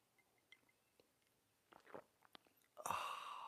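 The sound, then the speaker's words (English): Quiet sipping of coffee: faint lip clicks, then a couple of short wet slurps, followed by a longer, louder breathy rush of air as the drink is taken in. No talking. “It's called coffee, or a beverage. And it happens now with a simultaneous sip.”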